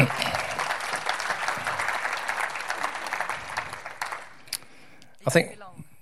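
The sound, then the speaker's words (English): A church audience breaks into steady, dense applause celebrating the church joining the Vineyard movement, for about four seconds, then it thins out and stops, followed by a few faint scattered sounds and a brief voice. “That's worth a round of applause, isn't it?”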